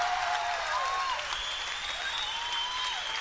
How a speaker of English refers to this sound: So if you want to applaud, fine, but instead of yelling more and more and more, why don't you try sometime thinking that the musicians are here, they're hanging out, leave it up to them, and don't be assholes all the time